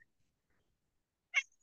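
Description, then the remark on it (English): A single short cat meow rings out clearly near the end of an otherwise silent moment, fairly loud, with no talking around it. “Well, that's the only cat that's happy from the SEC.”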